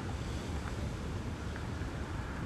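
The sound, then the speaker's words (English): A steady, gentle wash of calm ocean waves at sunrise, soft and continuous with no distinct breaks, blended with a low rumble of wind. No one speaks. “I mean, you have the waves. The waves are so subtle. They're so calm.”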